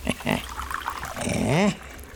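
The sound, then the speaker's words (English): Tea is poured into a glass in a short, steady stream, its ringing tone rising in pitch as the glass fills, after a few brief clinks and rustles. “A glass of tea, I think.”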